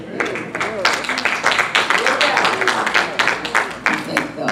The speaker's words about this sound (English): Well, thank God that you got your clap in. I got this from Pastor. He said, praise God and get all your clap in, because I think in a few minutes you would not be clapping and praising God. So do everything now.